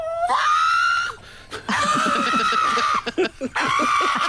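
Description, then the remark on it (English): A little pug getting its nails clipped lets out three long, high, strained screams with rising onsets and sustained wavering pitch, separated by brief gasps and snorting breaths, loud and strikingly human-like. “And the pug screams like a human as he's getting his nails clipped.”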